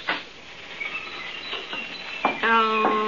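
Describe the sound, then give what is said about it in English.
A crowd of parakeets in a pet shop chirps and twitters nonstop, their high calls overlapping, with a louder, harsher squawk breaking through near the end. “The whole place is full of birds.”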